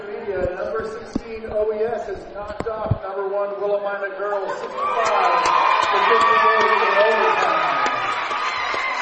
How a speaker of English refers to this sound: round of applause out of the Amity fans to see the number one ranked Willamina Bulldogs get knocked off at home to an OES team that wasn't even supposed to be in the tournament.